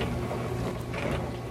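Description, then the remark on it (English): A steady, droning mechanical hum with a churning, whooshing undertone from an older dishwasher running continuously at moderate volume, probably a bit louder than 70 dB, with no voices. “70 is about how loud your dishwasher gets, though if you have an older one like me that we're listening to now, it's probably a bit higher.”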